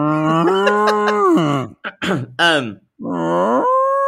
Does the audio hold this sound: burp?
no